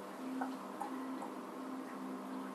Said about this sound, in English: You kick it, I knock. You knock on the door.